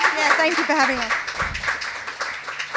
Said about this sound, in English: Please give them a huge round of applause. Thank you for having us.